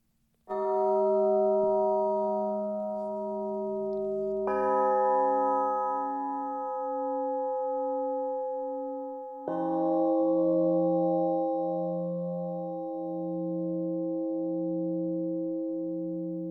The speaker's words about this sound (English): when you listen to these chimes, to just let your breathing happen. Don't plan it. Just notice how you feel. Notice how your body feels when you listen to this, and let the breathing sort of unfold. There's a few chimes here.